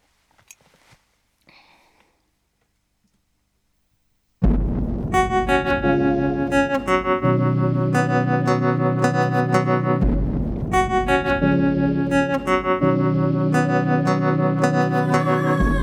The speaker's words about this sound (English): Let's listen to some of the remix and then talk about the music.